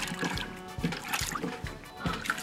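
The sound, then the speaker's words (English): A clogged toilet with a deflated balloon inside being flushed, its water churning and gurgling with repeated sloshing surges, the balloon creating a seal so the water struggles to drain rather than emptying cleanly. “So it's clogged. Right, so the flush doesn't work. No, it flushes, but it's like the balloon just creates a seal.”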